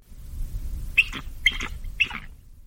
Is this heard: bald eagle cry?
yes